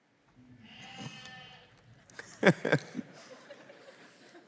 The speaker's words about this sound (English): And if you don't believe me, have you seen this viral clip of a sheep being rescued from a ditch? Just watch this.